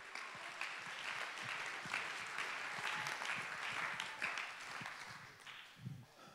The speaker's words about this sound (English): Clap your hands, lift your voice, and give him praise.